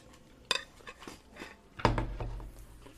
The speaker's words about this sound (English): I'm going to take a bite of my breakfast, my second breakfast, by the way.